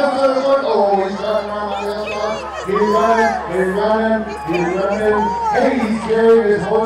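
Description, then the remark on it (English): A lively audience giggles and shrieks without pause as teams race pretending to be horses, many overlapping high-pitched voices rising into excited screams now and then, loud and continuous throughout. “The crowd giggles and screams.”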